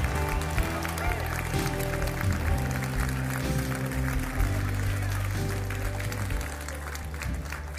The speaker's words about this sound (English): Give Him a great big clap offering and tell Him you love Him. Come on, clap your hands. Amen.